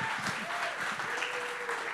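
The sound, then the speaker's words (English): A sizable crowd claps steadily to welcome a woman who is about to preach this morning, a dense wash of overlapping hand claps, sustained and moderately loud with a faint tonal hum beneath. “would you guys give her a big, huge hand clap and welcome her as she preaches this morning?”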